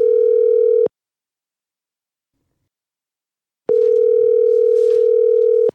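A loud, steady telephone ringing tone sounds in two long bursts separated by a few seconds of silence, like a call waiting to be answered.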